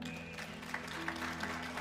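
An audience claps steadily together, a dense, even patter of many hands with no voices over it, set against a low steady hum.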